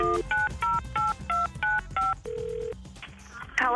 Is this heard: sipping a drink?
no